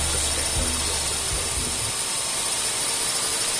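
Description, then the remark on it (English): A steady, loud mechanical whir of drones flying overhead, a broad hissing drone with low humming tones that fade after the first couple of seconds, with no voices. “Fucking drones everywhere. Drone wars.”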